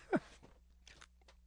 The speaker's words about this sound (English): A little sip of water there.